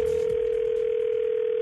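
A steady, unbroken telephone dial tone hums at one fixed mid pitch, loud and constant for its whole length, with faint hiss beneath it and no voices.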